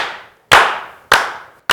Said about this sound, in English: Can we slow clap this film king out?